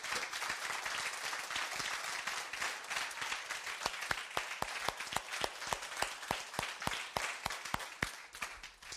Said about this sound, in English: The biggest hand clap of praise you got in you right now.